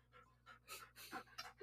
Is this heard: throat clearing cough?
no